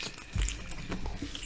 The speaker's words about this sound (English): So, while you're munching on that